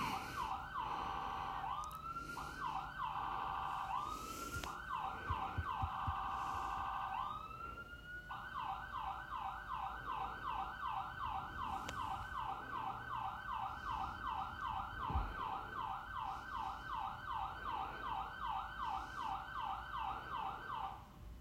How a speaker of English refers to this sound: behind a fire station. It's like somebody broke into the ambulance. Or they're testing out their ambulance.